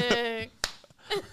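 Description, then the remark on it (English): One sharp, crisp hand clap lands on its own in a slow clap effect, set between short bursts of wordless voice before and after it. “Slow clap.”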